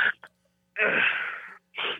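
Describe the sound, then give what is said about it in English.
A loud sneeze: a couple of quick sharp intakes, then a long, harsh, breathy burst, followed by another shorter gust of air. No talking. “Sorry about that. I had a sneeze.”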